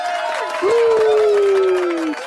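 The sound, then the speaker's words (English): A crowd claps and cheers loudly for a couple of seconds as a guest is welcomed, with a dense wash of applause and a sustained whistle-like tone rising and holding over the noise. “Round of applause, please.”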